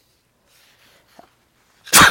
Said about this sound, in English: Oh, I got COVID. That was a COVID sneeze.